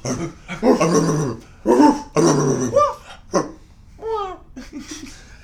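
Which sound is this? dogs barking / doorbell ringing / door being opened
dogs barking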